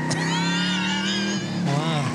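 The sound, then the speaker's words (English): A car engine roars loudly, accelerating with a steady droning whine that climbs in pitch toward the end as a woman's car, driven by Mose after he offered to park it on a busy street during a big party, pulls away. “Mose took off.”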